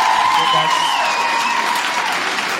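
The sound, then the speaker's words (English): A crowd bursts into sustained applause as women in the audience vote that toilet paper should go over the top of the spool, a dense, steady wash of clapping that stays loud throughout, with a faint whoop or cheer rising above it. “Now, by round of applause, I want to say how many girls agree with my girl, because my girl says it should go over the top.”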